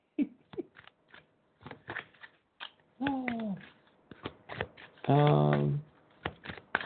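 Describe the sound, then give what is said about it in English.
Crisp flicks and snaps of oracle cards being shuffled and drawn as a unicorn card is picked, in quick irregular bursts, broken twice by short voiced sounds, one rising and one held. “So next time I could pick my own cards even.”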